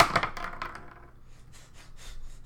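Two dice clatter across a table in a quick burst of sharp, hard clicks that quickly taper off, followed by a few faint ticks as they settle, rolled for strength saving throws in a game. No voices.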